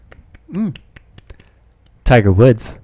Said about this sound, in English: Golf clap.